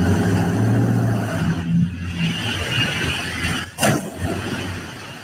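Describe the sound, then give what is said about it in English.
A car engine runs steadily as the car backs up to a truck and runs into it, its low hum rising into a rev, then briefly cutting out before a sharp burst of engine noise returns. No one speaks. “Oh, look, they're backing right up to his truck.”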